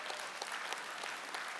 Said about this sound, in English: So that's my Mother's Day deal. I really got some applause there.